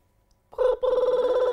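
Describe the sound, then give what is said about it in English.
A telephone rings loudly, a sustained electronic trill starting abruptly after a moment of near silence, with a brief break before continuing steadily. “No phone calls during the pod. I don't make the phone calls. They come to me.”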